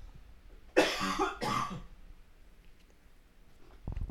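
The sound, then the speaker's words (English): Two loud coughs in quick succession, breathy and harsh, followed by a quiet pause and a faint shuffling sound near the end. “I'm going to cough.”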